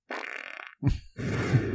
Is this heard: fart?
yes